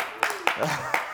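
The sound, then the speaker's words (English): A few sharp, scattered hand claps, three distinct cracks at uneven intervals, ring out over a person talking and murmuring voices, as a church audience keeps clapping sporadically for the Lord at a morning service. “They don't wanna stop. Lord, you saw me clapping.”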